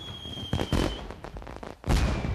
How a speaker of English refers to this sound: But then a firework...